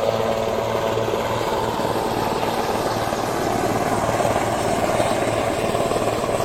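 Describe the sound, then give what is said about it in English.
Marine One, the presidential helicopter carrying the president, its rotor beating in a rapid, steady thump over a loud engine roar that holds at the same level throughout, with no one talking. “I'm going to wait till that helicopter leaves.”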